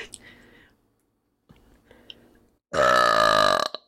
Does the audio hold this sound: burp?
yes